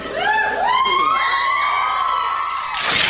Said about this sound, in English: Also, I'm gonna rip off additional hair every time the Fox audience chimes in with their approval. Their screams at this point kinda sounds like the cry of a banshee.